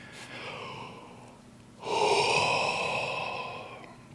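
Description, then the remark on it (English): A single long human yawn, fairly loud: a drawn-out breathy inhale, then a fuller, louder airy exhale that slowly trails off. No one talks. “Hopefully when I yawn, you'll yawn, and when you yawn, other people will yawn.”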